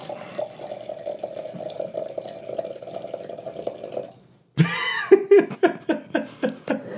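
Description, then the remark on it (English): Wine pours steadily into a glass for about four seconds, a continuous trickling stream. After a short pause, bursts of rhythmic laughter follow. “When you're being recorded, you suddenly become so aware of sound and how nice the ching was and how lovely the pouring was and the bottle pop and all those things.”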